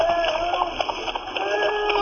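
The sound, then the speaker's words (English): Two frightened horses, Phoebe and Blue Boy, whinnying in alarm on a misty road, their high wavering neighs rising over a steady rush of background noise, fairly loud throughout the short stretch. “What in blazes has got into the horses? Something seems to have frightened them.”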